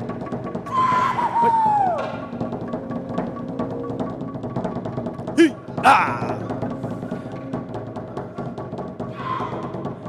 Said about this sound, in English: When the Samoans and the Polynesians are ready to give their all to the Lord, that's how they sound like. There you go, ladies and gentlemen. The blowing of the conch shell is a call for devotion.